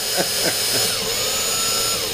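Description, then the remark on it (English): A power drill whirs steadily for a couple of seconds, its high-pitched motor whine holding constant with a few brief surges near the start, used while working on a guitar pedalboard. “You know, I did just get my first drill last year.”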